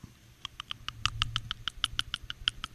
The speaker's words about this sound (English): It sounds like you're mixing baby food. Sounds like you're hitting your teeth or your mouth with a pen. I'm just smacking my teeth together.